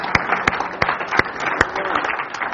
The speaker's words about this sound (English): Let's give the Lord a clap offering this morning.